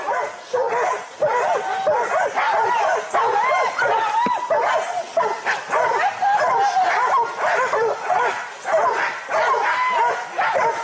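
Several dogs bark and yip in a dense, overlapping chorus, loud, with some whimpering mixed in and barely a pause across the whole stretch.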